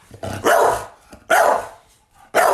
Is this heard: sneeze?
no